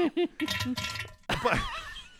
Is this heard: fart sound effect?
yes